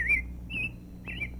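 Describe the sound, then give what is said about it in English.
A bird in a tree by a mill wheel calls three times in quick succession, each short whistled note clear, over a low, steady background hum. “'Tis a bird, we mean, that's calling on you.”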